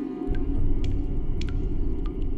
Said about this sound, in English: Nothing splashed from the spigot, and the handles had not turned. But the plinking of running water hitting the porcelain seemed to be coming from right in front of him.